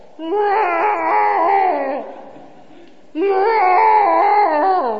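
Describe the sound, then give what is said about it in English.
A cat that had escaped the house and come back in howls twice in long, drawn-out, wavering yowls, each lasting about two seconds with a brief pause between them, loud with no other sounds. “We're in bed, we're laying down, and all of a sudden we hear this, like, howl. His howl.”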